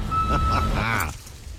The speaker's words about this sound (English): The one next to that is the lorry reversing.